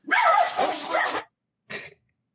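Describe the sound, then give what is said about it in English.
A dog barks loudly, a rapid run of barks blurring together for about a second, then a short pause before one final shorter bark. “Somebody's barking.”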